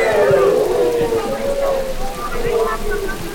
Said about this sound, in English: They've been waiting a long time for the rains. It's torrential. This is a typical Indian monsoon.